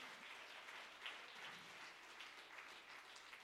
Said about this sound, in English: And let's give them a round of applause for their hard work.